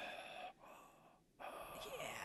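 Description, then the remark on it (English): A person imitates heavy, creepy breathing: long, raspy breaths drawn in and pushed out in a slow rhythm, with a brief quieter pause between them. “You hear his heavy breathing, too.”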